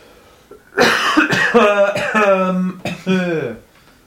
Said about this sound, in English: He coughs.